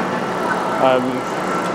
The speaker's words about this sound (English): Right, so currently at Paddington Station. Just hopped on the train because I thought it was there.